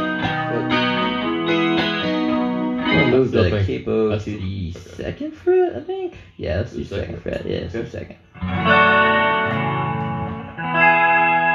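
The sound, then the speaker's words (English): An electric guitar played through an amp strums full, shimmering chords with a chorus effect, loud, broken in the middle by a stretch of wavering, bending single notes before the chords return. “I'm trying to match your chorusy sound with my echo here.”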